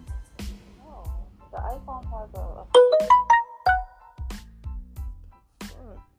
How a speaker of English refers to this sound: Yo, these notifications blow my mind. Like, I'm trying to silence this shit, but it's not... Yo, this shit is crazy.